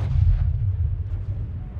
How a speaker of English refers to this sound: The sound of gunfire echoes through the night as the men fight for control of this strategic town. The people of Jilib are caught in the crossfire, their homes reduced to rubble and their lives shattered.